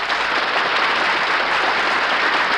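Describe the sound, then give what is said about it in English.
Steady, sustained applause from a large studio audience, a dense wash of clapping that stays loud and even throughout with no voices over it. “Now listen, folks, will you please stop applauding these guys?”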